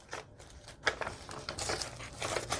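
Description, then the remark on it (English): Rustling and crinkling of heavily tea-dyed book pages in a small removable tracing-paper booklet being handled, with soft irregular bursts of crisp noise over about three seconds and no talking. “And here is another tracing paper, little removable booklet. I used some book pages from a book that was almost done, and I put some journaling cards that are removable here, and you can journal on those.”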